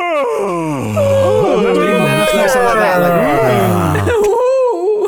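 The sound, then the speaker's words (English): A voice imitates a woman's loud, exaggerated, stomach-lurching yawn: a long wavering groan that rises and falls in pitch for about four seconds before breaking off, with a brief breathy sound after. “And it's obviously not something she can control, but the sound of her yawn makes my stomach lurch.”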